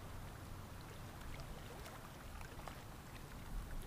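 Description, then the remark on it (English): Ocean waves crash onto a shore and recede: a steady, rushing wash of water with a low rumble underneath and a slight swell near the end. No voices. “Hearing the ocean waves crash on the shore and recede out.”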